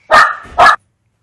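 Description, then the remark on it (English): A dog called Patrick gives two loud barks in quick succession, the second following about half a second after the first, then silence. “keep my joke in though, where I call the dog Patrick because I think that's funny.”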